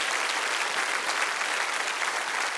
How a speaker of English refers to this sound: Now give the Lord a hand clap of praise if you believe that.